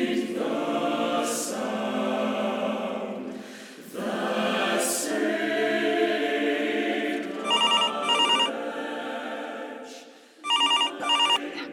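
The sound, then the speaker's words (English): A telephone bell rings in two short double bursts near the end, bright, over a steady bed of sustained background music. “Love, the phone got lost in my bag. Oh, of course I wasn't ignoring it.”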